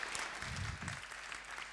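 A crowd applauds steadily, a dense, even patter of many hands clapping at once that holds at a fairly constant loudness throughout.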